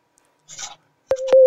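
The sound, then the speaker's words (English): A Skype call tone: a steady, loud mid-pitched beep that starts with a sharp click, gets a second click partway through and keeps sounding to the end, after a brief soft rustle. “so if anybody doesn't know the Skype like ringtone sounds like a sonar beep.”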